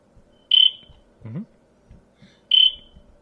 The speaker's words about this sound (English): That's just a peaceful cricket. Yeah. Right in my fucking ear.